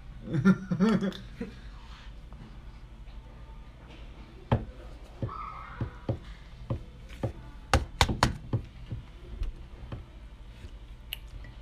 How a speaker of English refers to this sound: So this door is locked. I knock on it. I pound on it.